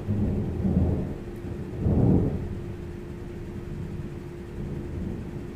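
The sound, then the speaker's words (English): Low, rolling thunder from an approaching storm rumbles, swelling twice into deeper booms before settling into a steady, muffled growl, with rain about to start. No voices, just the heavy low-end roll of a storm. “Is this fucking storming?”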